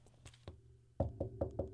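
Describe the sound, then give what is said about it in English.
Knocking on wood: a couple of light taps, a short pause, then five firmer, evenly spaced knocks in quick succession, fairly soft, with no voices. “That's me knocking on wood there.”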